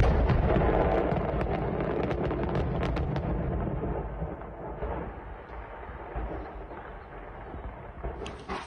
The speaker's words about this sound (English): So the first part is the initial explosion through the roof of this house that somebody down the street catches. Mm-hmm. So the initial reaction is, oh, there's something you don't see every day.